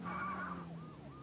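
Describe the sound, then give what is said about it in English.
A car drives up and its tires squeal in a series of high, wavering screeches over a low engine rumble as it comes to a stop, fairly loud, with no voices. “because they all use the same kind of, drive up and squeal to a stop.”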